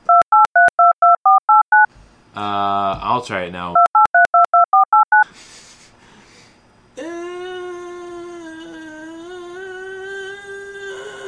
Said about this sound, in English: Yeah, it's modem sounds.